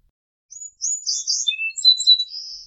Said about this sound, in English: Song sparrow.